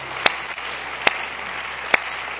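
A church audience claps its hands in praise to the Lord in a steady wash of applause, with three sharp, louder claps standing out at roughly regular intervals. No one speaks.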